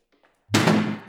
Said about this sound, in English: Sorry, I have a tendency to slam doors pretty hard.